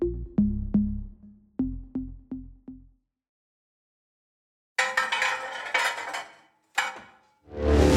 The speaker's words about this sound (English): The clatter of metal on Formica is the last straw.